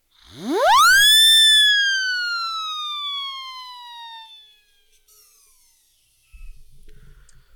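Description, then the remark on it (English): A siren whistle swoops sharply upward into a loud, piercing wail, then slowly slides back down and fades out over a few seconds, followed by faint rustling. “Do you have any idea how much fun a siren whistle is?”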